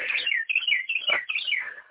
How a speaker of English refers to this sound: You have also, you've got a beautiful bird back there talking to us.